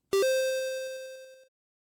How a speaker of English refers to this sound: So... we will be right back with the questions after this beep.